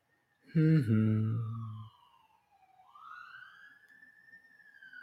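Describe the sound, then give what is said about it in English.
A siren wails in the suburbs of Virginia Beach, its pitch sliding down and then rising again in a long steady sweep, after a brief loud burst of voice near the start. “Omit that siren I got in the back.”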